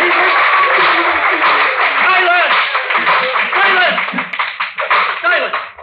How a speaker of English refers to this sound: Silence! The sergeant at arms will bring forward immediately the parties that applauded. I applauded more than anyone else, Your Honor.